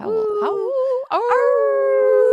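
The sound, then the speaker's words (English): A person imitates a wolf howl for the Wolves team, two drawn-out vocal howls with a brief break between them, the second rising and holding a long steady tone, loud. “Howl.”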